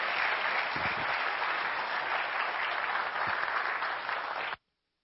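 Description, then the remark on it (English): Steady applause from a church audience on a Sunday morning, thanking the Sunday School ministry volunteers, a dense wash of many hands clapping at a constant loud level for about four and a half seconds before cutting off abruptly into silence. “Please join me in applause for those this morning.”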